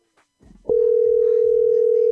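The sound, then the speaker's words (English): A steady, loud telephone dial tone switches on abruptly and holds unbroken as a call is placed to management, with faint voices and background noise under it just before and during. “All right, so we're going to buzz management right back because I see them hot on the line.”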